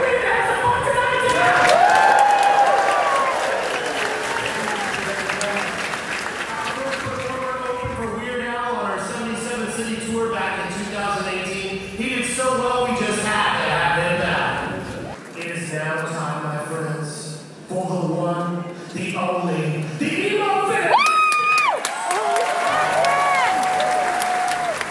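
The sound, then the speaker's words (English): At a show by comedian Emo Phillips, a woman yells loudly for him over a large audience that cheers and applauds throughout, the crowd noise dense, with voices rising sharply near the end. “with her mom yelling really loud for Emo Phillips, who, if you don't know, is a comedian unlike anybody else”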